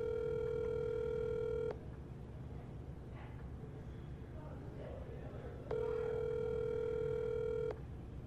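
A phone call ringing through: two long, steady electronic ring tones about two seconds each, separated by a pause of roughly four seconds, over a low, constant background rumble.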